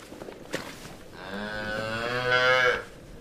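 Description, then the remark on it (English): A single long dairy cow moo rises and holds for over a second, loud and strained, after a brief knock and faint rustling in an otherwise quiet old stone barn on a dairy farm with cows and calves. “It's a dairy farm these days, so there are cows and calves around.”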